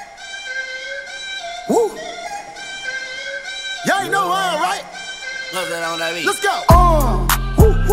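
A hip-hop track with sustained synth tones and gliding vocal ad-libs, building until a heavy, booming bass beat drops in near the end, loud.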